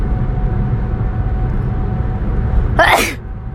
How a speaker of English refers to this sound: And sneeze on a podcast.